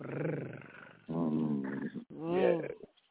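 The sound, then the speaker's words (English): A person imitates a cat's purr with three rolling, growly vocal bursts, the last rising a little louder before trailing off. No other sounds accompany it. “Let me know if you need that purr.”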